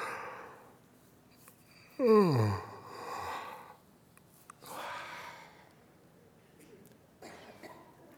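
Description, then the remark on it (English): A loud yawn that slides downward in pitch into a voiced groan, surrounded by softer breathy inhales and exhales in otherwise quiet, as people deliberately yawn as a stress-reduction exercise. “Now everybody try to yawn.”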